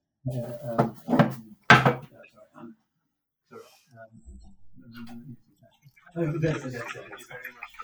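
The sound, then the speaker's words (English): A door opens with a few wooden clunks and thumps as someone answers a knock, followed by quiet shuffling and muffled voices talking in the background. “Now, somebody is knocking on my door. Can we just stop for a moment while I do?”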